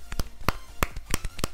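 A quiet golf clap: several soft, sharp hand claps at an uneven, unhurried pace, about seven or eight in a second and a half, with no voices.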